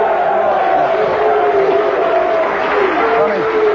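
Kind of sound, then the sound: crowd, applause and cheering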